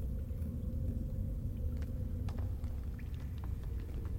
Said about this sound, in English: There's a, again, you can hear the crackle of the fire on the other side as the rumbles start to subside.